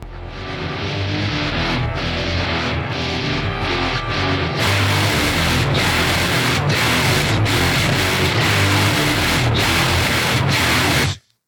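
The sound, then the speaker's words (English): A harsh, heavily distorted synthesizer made with Turbo Synth software roars in a dense, buzzy grind, loud and unbroken, with sharp rhythmic bursts pulsing through it from the midpoint before it cuts off abruptly. “This is what Turbo Synth sounds like, folks. Distortion from Hell.”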